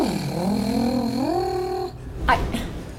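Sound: cat purring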